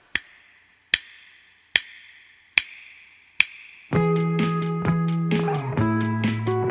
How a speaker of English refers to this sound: song commencing in 5 snaps.